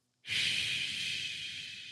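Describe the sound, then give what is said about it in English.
A person makes a long, steady hissing "shhh" with their mouth, imitating white noise. The breathy hiss starts abruptly, stays loud and even, and trails off only slightly. No one speaks. “Like, we should be finding like the best white noise there is.”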